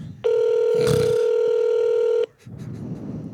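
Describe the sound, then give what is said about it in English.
A single loud ringback tone sounds over a phone line during a call to a Target Electronics store, a steady buzzy purr lasting about two seconds, then cuts to faint line hiss. “Come on, pick up the phone, though.”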